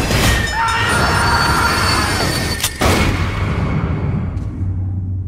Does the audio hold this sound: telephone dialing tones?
no